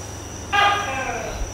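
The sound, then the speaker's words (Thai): A single loud, nasal tokay gecko call: one harmonic, horn-like note that bursts out sharply, then fades over about half a second against a low background hum. “ตุ๊กแกนี่เขาทักว่าใช่เลย”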